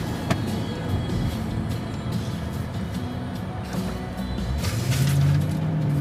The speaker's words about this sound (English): Guy's speeding off in his muscular car. Isn't that a Mustang? That's a Challenger.